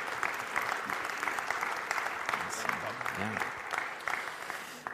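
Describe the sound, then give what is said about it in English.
Steady audience applause for people who shared their story fills the whole stretch, a dense patter of many hands clapping at an even level, with faint murmuring voices underneath. “Let's give them a round of applause for sharing their story.”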